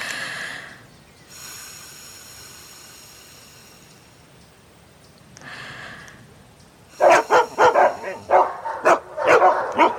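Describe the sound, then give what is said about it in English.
A thin, steady high dog whistle sounds twice, then dogs break into a burst of loud, rapid barking and yipping that fills the last few seconds. “Do only dogs hear dog whistles?”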